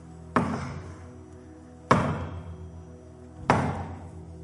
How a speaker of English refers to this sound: He said, behold, I stand at the door and I knock.